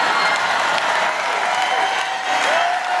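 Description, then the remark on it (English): A large crowd at a rally in the panhandle applauds and cheers steadily after a remark about stopping migrants, a dense wash of clapping with scattered shouts and whistles, loud and sustained throughout with no pauses. “What are they cheering for?”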